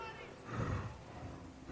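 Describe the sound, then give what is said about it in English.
A horse in a starting gate before a race snorts once, a short breathy blast of air through the nostrils, fairly faint and heard over a low background murmur. “I love the snorting.”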